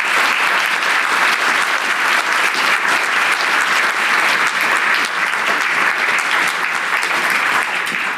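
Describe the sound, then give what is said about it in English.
Sustained applause from a large audience for a discussion panel, a dense, steady wash of clapping hands that stays loud and even for several seconds with no talking over it. “Can you all give this lovely panel a round of applause?”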